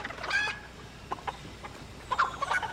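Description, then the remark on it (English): A chicken clucks in short, scattered bursts, a few sharp clucks early and another cluster near the end, fairly quiet, with no talking. “Where's this chicken? I want to pick it up for a sec. I hear it.”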